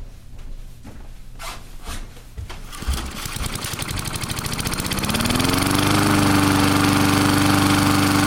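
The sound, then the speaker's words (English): A lawn mower engine sputters and catches, then revs up to a steady, loud buzzing drone that holds to the end, with no talking. “Think I'll hold off till after the lawn's mowed.”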